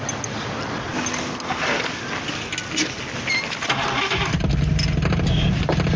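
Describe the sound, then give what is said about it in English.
A car engine cranks with a rapid grinding whir, then catches around four seconds in and settles into a loud, steady rumbling idle; the car, named Christine, is being started up. “Sonny, you ever owned a car before? No. I just got my license. Start her up.”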